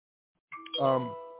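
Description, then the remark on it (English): A phone's text message notification chime: a short two-part electronic ding-dong, a light higher tone followed by a fuller, ringing note that lingers and slowly fades. “Like, who is texting me in the middle of the program?”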